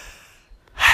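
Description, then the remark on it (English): A single sneeze: a soft breathy intake fades to near silence, then a sudden loud, hissing burst of air bursts out at the end. No one speaks. “Bless you.”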